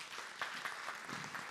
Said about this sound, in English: Give him a hand clap.